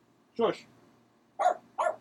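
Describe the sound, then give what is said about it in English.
A dog sitting on the floor barks three times: one bark, a short pause, then two quick barks in succession, loud and sharp. “He's sitting on the floor and barking at me.”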